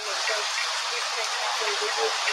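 Steady, dense rushing water heard over a recorded phone call fills the whole stretch, a broad continuous hiss and churn with no pauses, fairly loud, like a strong flow pouring past; the caller has driven into the water.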